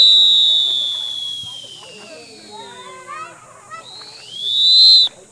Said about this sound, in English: That's my bad oscillating whistle, so. It sounded great to me. Okay, thank you. They also use the same brand of whistle, the Fox 40 Classic. And I wanted to try it out, so I bought a Fox 40 Classic. It's a standard whistle.